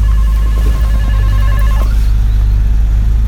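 A steady electronic door buzzer rings with a bright, tonal hum for nearly two seconds, then cuts off, leaving a low rumbling background of traffic or engine noise.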